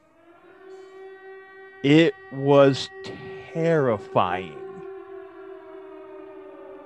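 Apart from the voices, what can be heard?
air raid siren wailing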